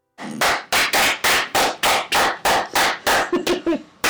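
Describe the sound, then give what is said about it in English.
Steady rhythmic hand clapping to welcome guests, about a dozen sharp, loud claps spaced evenly at a brisk tempo, with a couple of quicker claps near the end and no talking. “So we'll get right into it after our clapping them in.”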